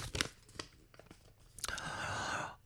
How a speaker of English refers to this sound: There's all the folded up bits of paper in there. I have not looked to see what I'm pulling out. This may suddenly become the most boring ad lib around. I'm unfolding a bit of paper now.